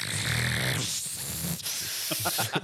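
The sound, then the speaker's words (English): A voice imitates a tiny pressure washer used to clean hardened wax out of an ear, with a steady, breathy hiss of spray, then breaks into a short run of sputtering bursts near the end. “So he had to go in there, and basically he used, like, it's like a tiny little pressure washer.”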